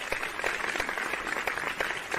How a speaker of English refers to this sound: I love that. That really, really deserved an applaud.